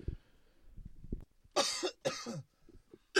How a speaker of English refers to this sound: Shit, sorry, still coughing.